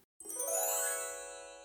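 Wind chimes tinkle in a bright cluster of metallic tones, ringing together and sustaining as they slowly fade, close and clear with no voices.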